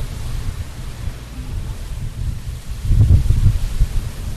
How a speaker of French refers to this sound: Suspense, aussi un moment pour sentir le vent ou l'entendre